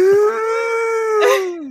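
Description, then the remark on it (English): A person's voice imitates a long, sustained howl, holding a steady tone for over a second before it falls away, loud with no other sounds around it. “They don't speak Howl, you know.”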